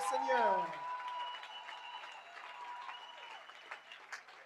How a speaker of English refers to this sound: Give the Lord a mighty hand clap offering.